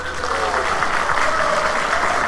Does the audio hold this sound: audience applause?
yes